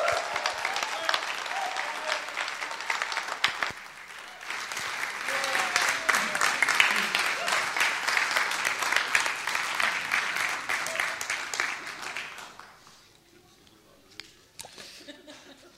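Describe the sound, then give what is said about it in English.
A crowd claps steadily and loudly for about twelve seconds, the applause swelling in the middle before fading out, followed by a brief quiet stretch with a few scattered sounds; a morning gathering at Hope House, the Wasbands Christian Fellowship, applauding a guest speaker. “So I want to give you, I want you to give her a massive, massive round of applause”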